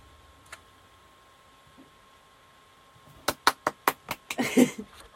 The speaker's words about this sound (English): That was me clapping, by the way.